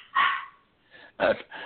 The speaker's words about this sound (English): I'm trying to be quiet because my dogs are acting up, and I apologize for that. That's why I mute in between while … is talking so that you don't hear my dogs barking in the background.